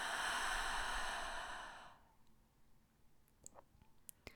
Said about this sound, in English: Deep breath in through your nose, into your belly, up to your chest, hold, and letting it go.